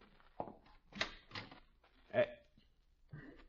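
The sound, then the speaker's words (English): A front door is opened: a short series of quiet knocks, clunks and rattles from the latch and handle, spread over a few seconds, with a faint muffled sound that might be a voice. “You get the scissors, I'll get the door.”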